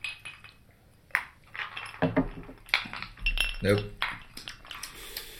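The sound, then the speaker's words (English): Glasses of Crown Peach clink together in a toast, a bright sharp chink followed by a few softer clinks and rustles, with people talking around it. “All right, cheers with the Crown Peach.”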